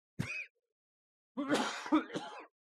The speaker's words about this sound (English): God damn. I'm coughing like a motherfucker today. It's okay. And it's not even like a chronic cough.